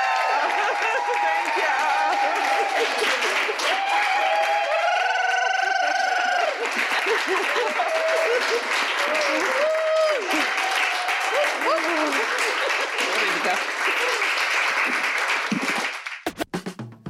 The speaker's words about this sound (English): Please give another round of applause for them.